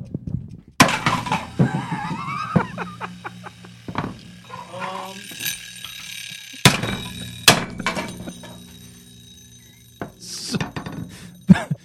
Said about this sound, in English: A hammer. I think you broke your microphone. How did that... I took a fucking hammer and destroyed the egg timer.